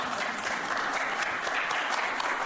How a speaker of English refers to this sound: They're all clapping.